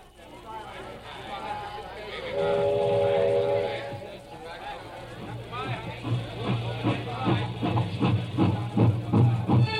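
A train rumbles along railroad tracks with a steady low roar and hiss, a sustained whistle-like tone sounding early, then a quickening rhythmic clatter of wheels over rail joints.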